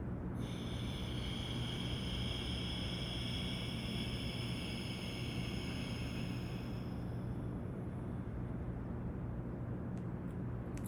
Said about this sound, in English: an ujjayi breath where I'm constricting my throat on both the inhale and the exhale. And maybe you'll notice if you hear anything different. So with my mouth closed, I'm gonna breathe in through my nose and kind of constrict my throat. And exhale.